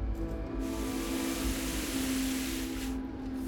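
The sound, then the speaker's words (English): A steady, hissing rush of water sprays continuously for a few seconds over a low mechanical hum as someone sprays water to clean down a mess, moderately loud, with no voices. “Spraying down the mess.”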